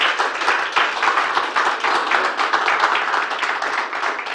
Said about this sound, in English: But anyway, give Jesus another hand clap of praise, would you?